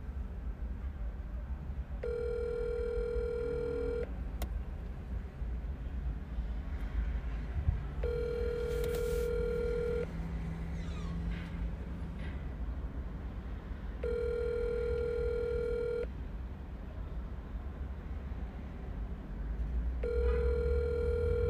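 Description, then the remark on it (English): An outgoing call's ringback tone repeats four times, each long electronic trill lasting about two seconds with roughly four-second gaps, over a steady low rumble of background noise. “This guy's phone is never on, but we'll see if he answers.”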